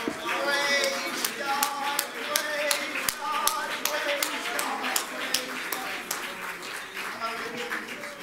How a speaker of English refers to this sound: Why don't we clap our hands one more time?